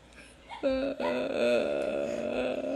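A loud, drawn-out vocal yawn with a strange wavering, moaning pitch that slides and wobbles for a couple of seconds, sounding almost like a wail.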